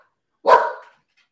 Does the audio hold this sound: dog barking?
yes